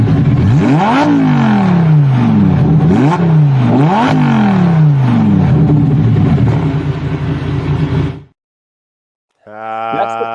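A Lamborghini sports car engine revs hard, its pitch climbing and dropping in repeated surges for about eight seconds, then cuts out abruptly before a brief steady buzzing tone.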